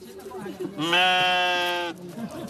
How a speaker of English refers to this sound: Sheep make their way through the narrow alleyways between houses to reach their stables. It's been a tradition for centuries to keep animals in the building's lower floors.